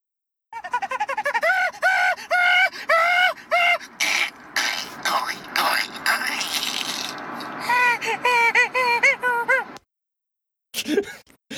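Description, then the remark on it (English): A person imitates a monkey with rapid, rhythmic hooting calls that rise and fall in pitch, breaking into breathy, excited chatter before a final burst of repeated hoots and a brief pause. “I mean, that's a freakishly good monkey impersonation.”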